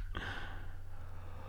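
A person fakes a snore: one drawn-out, raspy, snorting breath, fairly loud, over a low steady hum with no talking.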